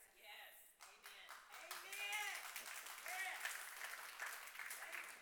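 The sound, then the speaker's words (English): Scattered, sparse clapping from about six audience members, sharp irregular slaps rather than full applause, with murmuring voices and some vocal reactions mixed in throughout. “Thank you, the six of you that clapped.”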